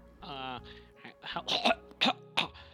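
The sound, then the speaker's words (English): A caller on a live radio show makes a brief drawn-out vocal sound, then three or four short, harsh coughs in quick bursts, fairly loud, like someone clearing their throat and hacking. “Who are you and why are you coughing on my live radio show?”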